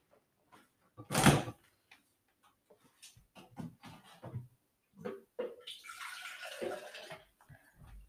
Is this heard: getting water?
yes